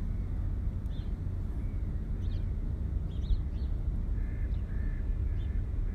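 Gulls and other birds call intermittently, with short squawks scattered throughout and a drawn-out cry near the end, all over a steady low outdoor rumble.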